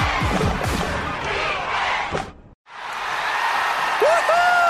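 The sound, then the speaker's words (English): A dense crowd of Houston Texans fans roars and cheers in Energy Stadium, Houston, with scattered whistles and thuds, cutting briefly to silence before the loud, broad crowd noise swells back in. “So what are you guys cheering about?”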